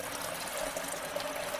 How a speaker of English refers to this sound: So now I am making the hot water. And now I pour the hot water onto the coffee. And then I take the plunger. Oh, and I do, how do you call it? Oh. The French press.